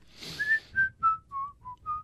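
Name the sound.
person whistling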